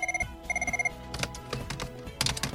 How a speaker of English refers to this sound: What in the world? The phone's ringing. Hang on.